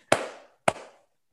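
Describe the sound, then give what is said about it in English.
Two sharp hand claps, about half a second apart, each a crisp, loud smack with a short fading ring. No voices accompany them. “Why are you clapping?”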